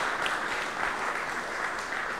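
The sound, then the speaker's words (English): An audience applauds steadily, a dense wash of many hands clapping at an even, moderately loud level for the whole stretch without a break. “Yeah, that's where the clap.”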